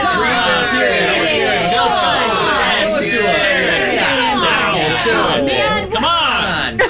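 A small crowd, gathered to hear a reading from a book, chatters at once, several overlapping voices forming a steady, fairly loud babble with a few brief chuckles, no single voice standing out.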